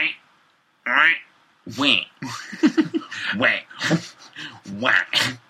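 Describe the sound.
A person imitates a frog with a run of short, squeaky, croaking vocal bursts, uneven in rhythm and fairly loud, with bits of laughter mixed in.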